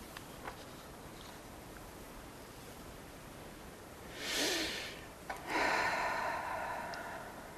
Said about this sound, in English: And let's take a couple of longer, slower, deeper breaths here. Just three.